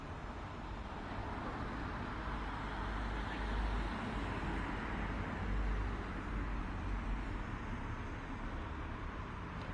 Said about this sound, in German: Die Ampeln sind aus, weil es schon so spät ist und deshalb fahren die Autos einfach so vorbei.